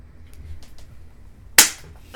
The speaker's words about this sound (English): That was good. That was a crispy clapping.